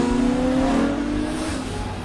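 A motorcycle engine revs loudly, a steady harmonic roar with rising pitch as the helmeted rider accelerates away very fast, filling the whole two seconds without any talking.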